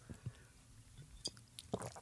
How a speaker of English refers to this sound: That was a big sip. I could hear that swallow. It's not the best, is it? It burns, doesn't it?